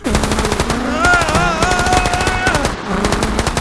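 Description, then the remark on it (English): Loud, rapid automatic gunfire rattles in fast, steady bursts for several seconds, with a wavering tonal whine rising over the shots midway before the firing carries on, leaving bullet hole damage in the place. “All right, so now this place has bullet hole damage.”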